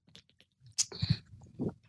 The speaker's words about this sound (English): I'm a little under the weather today, so I got to take another sip of water here, but thanks for hanging with me.